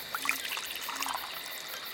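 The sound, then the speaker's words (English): Water pours into a glass in a steady trickle lasting a couple of seconds, with a few bright splashy plinks near the start, at moderate volume, no voices. “You pour water”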